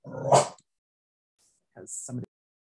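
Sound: dog barking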